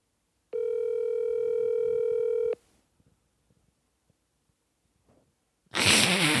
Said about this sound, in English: Oh, my phone's ringing. Shh.